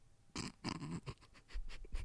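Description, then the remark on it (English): A dog snorts several times in quick, uneven bursts: two heavier rasping snorts first, then a string of shorter, softer huffs. It's quiet, with no talking. “How dare you, dog?”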